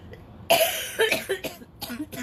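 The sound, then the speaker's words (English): A sudden, harsh cough bursts out, followed by a few shorter, rougher coughs and throat sounds trailing off over a couple of seconds. “Like my cough.”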